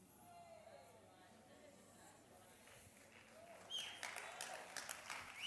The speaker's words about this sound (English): I'm happy you're clapping, so we're on the same page then.